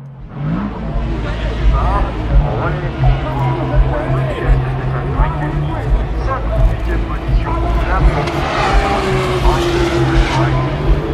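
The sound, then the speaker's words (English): Race cars roar through the S's chicane, coming under the Dunlop Bridge and heading down to Tête Rouge at 9:10 while it is still light, engines droning loudly and steadily with pitch dips and climbs as they brake and accelerate, plus faint tire squeals and a voice murmuring underneath. “You're listening to the sound of the S's as the cars come under the Dunlop Bridge, emerge the other side through the S's and make their way down to Tête Rouge.”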